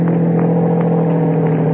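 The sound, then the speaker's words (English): A car engine runs steadily, a loud, even motor hum with a faint rise in pitch as the car starts off toward a gate. No voices are heard. “We went out, got into his car, started for the gate.”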